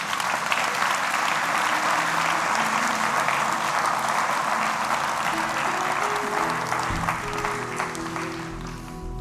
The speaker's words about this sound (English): Let's clap for Jesus.